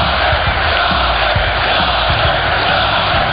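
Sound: arena crowd cheering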